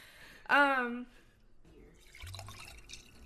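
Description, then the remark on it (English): A short voiced tone is followed by Pinot Gris white wine being poured into a glass, a soft, trickling and gurgling splash that continues steadily for a couple of seconds. “These are the sweet ASMR sounds of me pouring Pinot Gris into my glass.”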